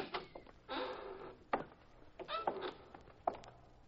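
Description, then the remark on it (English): A warehouse side door scrapes and rattles as it is pushed open, with a few sharp clunks and knocks spaced across the moment, moderately loud, no one speaking. “The side door is open.”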